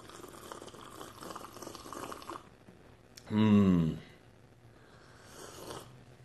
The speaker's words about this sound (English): But first, we have to take another sip of this coffee because, whew, Wednesday, we need all the coffee that we can get.